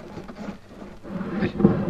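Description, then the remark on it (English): A secret drawer in a desk slides open with a low, rumbling wooden scrape that builds over a couple of seconds and ends in a dull knock, moderately loud, with no voices. “They're just here in the secret drawer.”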